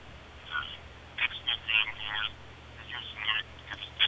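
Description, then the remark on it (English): A faint, thin voice of a caller on a cell phone comes through the line, tinny and muffled, its words too quiet to make out over a steady low hum and hiss. “Can barely hear you. You must be on a cell phone.”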